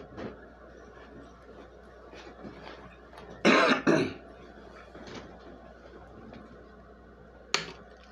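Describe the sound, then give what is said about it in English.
A pair of harsh coughs from a person after smoking bursts out in quick succession, followed a few seconds later by one shorter cough, over a quiet background. “I'm coughing over here.”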